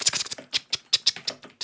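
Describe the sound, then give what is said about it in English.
Rapid, slightly uneven clacking of keys on a clicky mechanical keyboard as a web address is typed in, about ten sharp strikes in under two seconds, clear with no voices. “You might hear some keyboard clicking here.”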